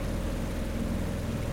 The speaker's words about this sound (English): Sharon let the motor idle, but the coasting speed was fast. And there she is, Rock Island.